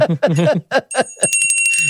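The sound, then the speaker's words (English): A bright, high bell rings out midway and keeps sustaining its clear ringing tones while people go on talking over it, fairly loud. “Ring the bell”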